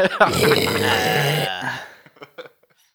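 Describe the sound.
A voice imitates a garbage disposal grinding on an avocado pit left in it: a loud, rough, gurgling growl lasting about a second and a half, then a few short crunchy clicks trailing off.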